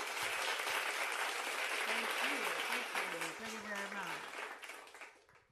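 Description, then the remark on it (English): A crowd applause sound effect: dense, steady applause lasting about five seconds, with faint voices and cheering mixed in, tapering off toward the end. “I love my sound effects. I'm going to do it again. Because I'm at the end, that's why I'm clapping.”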